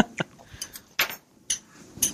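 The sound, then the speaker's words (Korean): Crunchy chewing of cubed radish kimchi (kkakdugi): about five sharp, bright crunches spaced roughly half a second apart, with fainter crackles between them and no talking. “깍두기 씹는 소리.”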